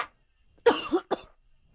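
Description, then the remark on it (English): Two quick coughs, the first harsher and longer, the second a shorter follow-up, with silence around them and no talking. “Sorry, I was coughing.”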